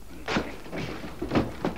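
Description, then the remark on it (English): A door is forced open with several heavy, dull thuds and cracking impacts in quick, uneven succession, fairly loud, with no voices. “Let's break right in. We know Baxter's inside. Just as you say, Vance. This door shouldn't give us much trouble.”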